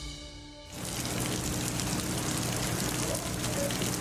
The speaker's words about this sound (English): The sounds of driving rain and high winds in Cuba as Hurricane Ian passes through on its way to Florida.